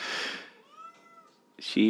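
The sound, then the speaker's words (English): A female cat being held by a person lets out a sharp, breathy hiss at a person's face, followed by a brief, low, drawn-out yowl, then a burst of voice and handling noise at the end. “She looked right at your face and hissed.”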